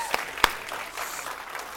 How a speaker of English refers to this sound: So one more time, can we give David a huge round of applause?